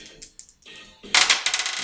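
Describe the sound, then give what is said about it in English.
Dice rattle and clatter across a hard, flat tabletop, a few light taps first, then a loud burst of rapid clicking bounces as they tumble and settle. No voices. “what dice did you select? Here, try these guys.”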